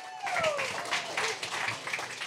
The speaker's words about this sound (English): First, clap it up